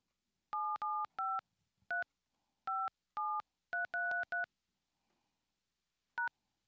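A rapid series of phone keypad DTMF tones as an area code and mobile phone number are entered, short dual-pitch beeps in quick clusters with brief pauses, clear with no talking.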